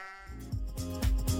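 A sheep bleats in a short series of wavering, nasal calls, clear, with no voices or other sounds around it.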